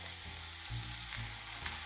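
Mushrooms sizzle steadily in a hot frying pan, a mellow, dense crackling hiss with low thuds and scrapes as they're gently pushed around so most of them touch the bottom of the pan, no voices.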